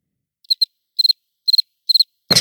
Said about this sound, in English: Crickets.